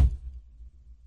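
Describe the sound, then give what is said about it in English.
One hand slaps down hard on a board, a single dull, low thud with a brief sharp edge that dies into a faint low rumble. No one speaks. “And it slammed off the turf like a basketball, like my hand on this board in front of me.”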